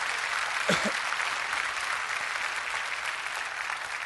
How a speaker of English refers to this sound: Give the Lord a clap offering and say amen.